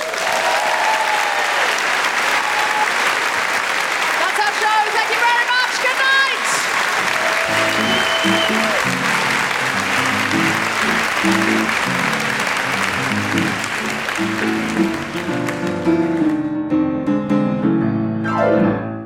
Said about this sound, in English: A big round of applause to all of our panelists and our amazing interpreters.